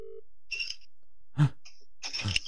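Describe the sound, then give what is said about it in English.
Crinkly rustling as someone rushes to answer a phone comes in short bursts with a dull thump between them, ending in a longer scratchy stretch of handling noise. A brief steady tone sounds at the very start. “That sounds like rustling.”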